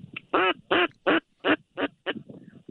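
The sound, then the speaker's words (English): A duck quacks loudly in a rhythmic run of about six raspy calls that gradually fade, followed by softer, lower chattering quacks. “I tell you, it's a steady flight of birds, but they're funky. They don't want to come in.”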